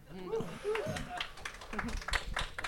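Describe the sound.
Light, polite golf-style applause: a few soft, scattered claps from a small group, fairly quiet, following a bit of talking at the start.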